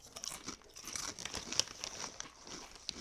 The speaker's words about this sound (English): Let's see if this captures it. Let's do it. Let's crunch as loud as we can into the microphone.